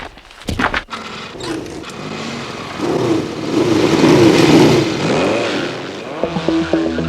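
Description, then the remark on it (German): Small moped engines rev up sharply and then drone steadily as the mopeds pull away, a loud, buzzing rise of motor noise with no talking, ending in a rattling idle-like sputter. “Los, auf die Mofas, Kumpel.”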